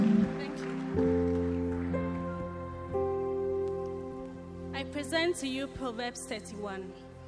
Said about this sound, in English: Let's welcome her with a clap offering. A clap.